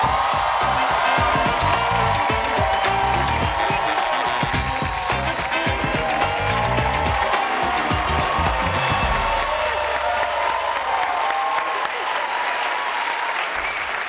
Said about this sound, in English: Wow, that's like the best applause I've ever gotten.